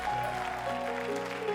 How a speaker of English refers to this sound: Amen, amen. Can you give Jesus a hand clap of praise in this place?